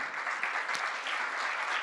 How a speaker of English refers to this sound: So let's give God a round of applause. Amen.